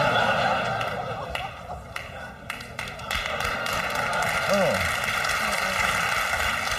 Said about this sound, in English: Booing into applause, my favorite reaction.